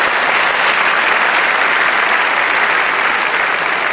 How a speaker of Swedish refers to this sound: Tycker vi ska applådera det.